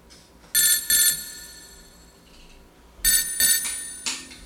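A telephone rings in two double bursts, a bright trilling bell-like tone repeating with a short pause between pairs, fairly loud, with a faint low background hum.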